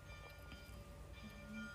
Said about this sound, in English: Look at that. We even set the alarm bells off. I mean, isn't that amazing?